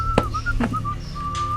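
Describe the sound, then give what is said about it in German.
A man whistles his usual simple tune in short, wavering notes with brief pauses between phrases while mucking out stable stalls a few boxes away, moderately loud, over a low steady background hum with a few soft knocks. “…, pfeif doch mal was anderes, bitte”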